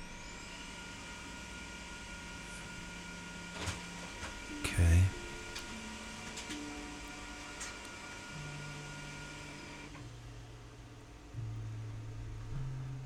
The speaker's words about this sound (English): Success. Printer is still working. Nice.